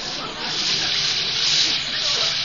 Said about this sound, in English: Well, let me reach behind the curtain here and turn on the water. I'll let it get good and hot.